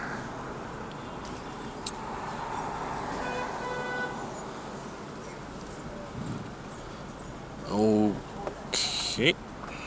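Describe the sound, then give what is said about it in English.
A car is put in gear and rolls forward down a queue of slow traffic, a steady rumble of engine and road noise throughout, with a short horn toot near the end followed by a brief second honk. “The queue, we are moving again, so I have to get the car in gear and move down the line.”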